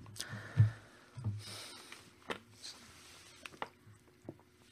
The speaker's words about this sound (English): I'm boring today, just drinking water. Rare occurrence. I hate water.